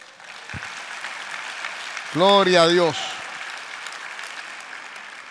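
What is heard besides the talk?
audience applauding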